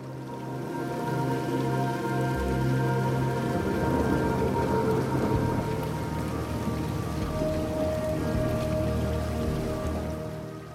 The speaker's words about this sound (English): Now focus on the sound of the water as it continues to run downstream.